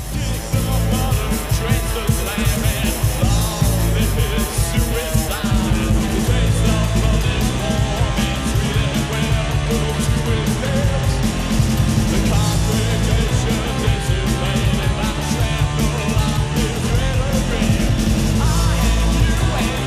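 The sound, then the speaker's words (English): A loud, dense rock song driven by a groovy, repeating bass riff, with punchy drums pushed forward in the mix and a steady, unbroken energy throughout. “I mean, like, which again is something I've compared them to, but like specifically that riff and bass and kind of the more forward drum stuff.”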